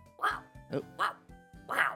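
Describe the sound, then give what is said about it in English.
A police dog barks four times in quick succession, short sharp yelps spaced unevenly over two seconds, fairly loud with a faint low hum underneath. “Also, if you're not a cop, how do you have a cop dog?”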